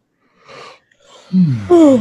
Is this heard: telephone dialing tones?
no